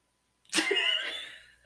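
A single congested snore: a raspy, whistling nasal breath lasting about a second, starting strong and slowly fading, followed by a short low thump at the very end. No one talks.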